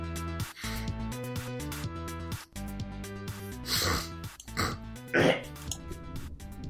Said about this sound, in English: That's my way of checking. Just hawking and blowing my nose.